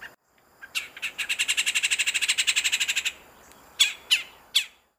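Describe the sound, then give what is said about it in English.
A red-bellied woodpecker's rolling call: a fast, even trill of about a dozen and a half rattling notes, followed by three separate, louder, sharper calls. No one speaks. “They also do a rolling call.”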